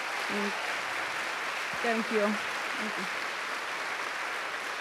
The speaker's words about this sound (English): I think we should all just take a moment to give Imbolo Mbue a huge round of applause and thank her for her time.